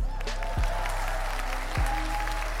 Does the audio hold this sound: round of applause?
yes